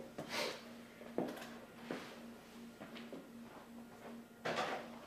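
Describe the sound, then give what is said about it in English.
A door is handled and opened as someone answers it, with several soft knocks, clicks and a wooden thump spread over a few seconds, beneath a steady low electrical hum. No one speaks. “Somebody probably got the door.”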